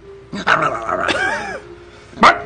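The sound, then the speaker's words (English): A pack of wild dogs snarl and bark while tearing apart a corpse in a plaza, a harsh stretch of growling yelps followed by a short pause and one more sharp bark burst, with no talking. “One of the corpses is being torn apart by a pack of wild dogs.”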